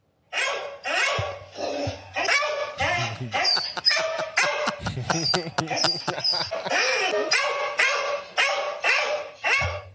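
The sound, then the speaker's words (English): A cattle dog barks loudly and repeatedly, a rapid, steady run of sharp barks with only brief gaps, continuing for the whole stretch with no other sounds standing out. “Cattle dog barking sound.”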